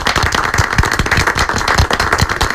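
A round of applause for nurses on International Nurses Day fills the whole stretch, dense overlapping claps at steady loudness, lively, with no voices over it.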